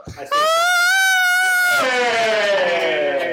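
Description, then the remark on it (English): A girl screams into a microphone, a loud, sustained, high-pitched scream holding one shrill note before it breaks into a harsher, falling wail that continues to the end. “She was screaming into the microphone.”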